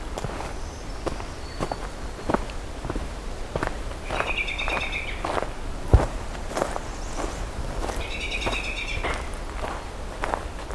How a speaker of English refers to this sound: We got an oven bird and an American robin.